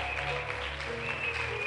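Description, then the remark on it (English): A crowd claps steadily for people coming to the front to pray, a dense, continuous wash of applause with no individual claps standing out, steady in loudness throughout and no voices on top. “Oh, just keep clapping for them as they come.”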